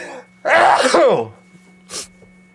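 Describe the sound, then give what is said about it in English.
A single loud sneeze bursts out with a sharp intake and a forceful explosive release, followed a moment later by a short breathy sniff. No talking. “I'm going to sneeze now.”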